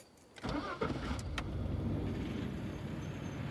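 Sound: truck engine starting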